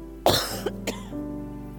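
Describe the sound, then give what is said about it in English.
A sharp cough bursts out from a speaker at a church service, followed by a couple of short throat-clearing rasps, then a low steady hum with no talking. “I'm going to apologize beforehand. If I start coughing, just ignore me.”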